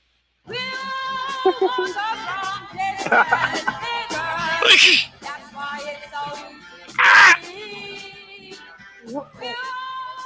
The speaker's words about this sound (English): Hold on, can we hear her scream again?